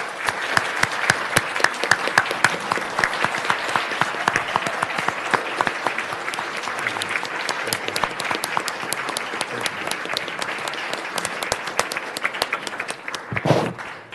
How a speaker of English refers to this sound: And if I might add, as mayor, please stand up, and everybody in the crowd, please give these people a big round of applause for all their hard work that they've done.